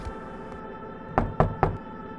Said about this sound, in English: The knocks come in groups of three, exactly 5 seconds apart.